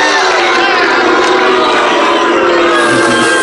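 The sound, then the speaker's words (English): A large crowd voices its disapproval at news that emerging market stocks are down, a loud, sustained wash of mingled groans and jeers that holds steady for a few seconds with no single voice standing out. “Crowd hates it.”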